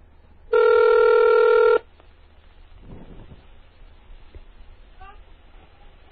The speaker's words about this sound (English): Now this one should pick up. I dialed up into this phone using Hyper Terminal.